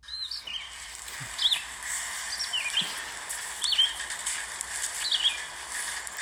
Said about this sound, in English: Some kind of bird. That's right. What kind of bird? I'm not a real good bird connoisseur.